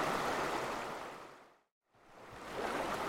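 A steady, full rush of flowing river water on a morning fades away to a brief moment of silence midway, then swells back up to its earlier loudness. No voices are heard.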